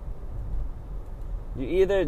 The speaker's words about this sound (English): God damn these fucking cars.